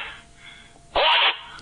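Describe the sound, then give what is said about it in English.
A single loud, sharp bark from a dog that wants to be held bursts out after a stretch of quiet background hiss, short, then fades back to low noise. “Your dog wants to be held so bad.”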